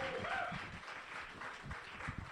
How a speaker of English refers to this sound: That was her first time up here, guys. Give her a big old round of applause. That's awesome.